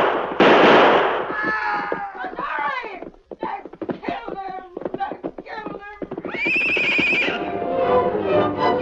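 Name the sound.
gunshots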